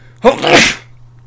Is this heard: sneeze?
yes